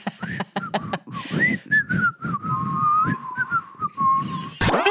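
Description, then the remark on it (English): A wavering, shrill whistle, apparently a person imitating a stovetop kettle, rises and dips over a low vocal hum for several seconds, then cuts off with a sudden noisy burst. “And it whistles. Does that angry whistle?”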